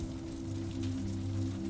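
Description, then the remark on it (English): Steady rain patters against window glass, a continuous soft hiss with no pauses, at a moderate, even level with a faint low hum underneath. “The rain pelts on the windows”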